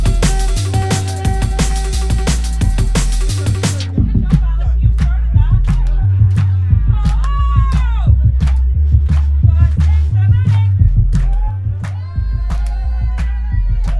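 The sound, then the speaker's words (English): A crowd of people in London claps in a steady rhythm along to just the loud, thumping bass line of a tune, with scattered voices and whistles rising above the music. The clapping keeps time throughout. “Yeah, okay, let's get some hand claps going, come on.”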